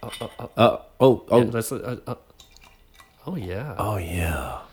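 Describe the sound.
Beer glugs from a bottle into a glass in short bursts, with a bubbly gurgle and fizz building toward the end, while voices talk over the start.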